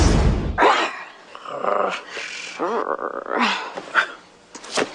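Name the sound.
dog growling and barking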